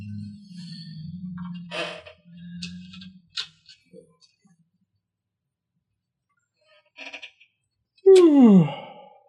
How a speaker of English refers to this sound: Everybody's yawning.